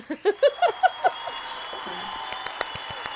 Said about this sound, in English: That's the applause for your TED Talk, just so you know. See, this is where we need, like, an applause. There you go.